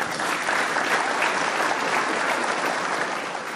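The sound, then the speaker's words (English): A crowd gives the speaker one more round of applause, the dense clapping holding a loud, even level for several seconds before easing slightly at the end, with no voices over it. “Let's give our speaker one more round of applause.”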